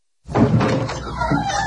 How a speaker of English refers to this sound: I didn't open the door yet. Hold on a second. Let me open the door because you're sounding muffled.